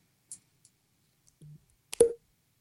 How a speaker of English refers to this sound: I'm putting my knife away.